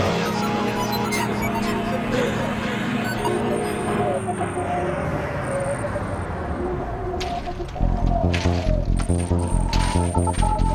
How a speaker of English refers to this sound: Anybody else hearing that? Yeah, what is it? I don't know. Sounds like interference from the rover.